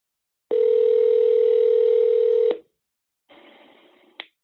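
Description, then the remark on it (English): A loud, steady telephone ringback tone on an outgoing call drones for about two seconds and then cuts off, followed by a quieter, muffled burst of line noise and a brief click near the end. “Oh, it's ringing. It's actually ringing.”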